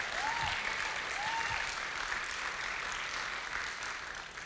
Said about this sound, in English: Would you give them a good round of applause?